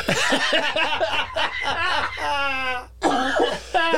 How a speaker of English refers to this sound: Here's us still coughing and hacking. I've read that it's a nationwide sickness, and it's not Rona.